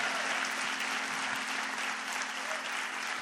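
An audience applauds the worship team steadily, many hands clapping together in a dense, continuous wash of sound that holds an even, moderate loudness throughout without pausing.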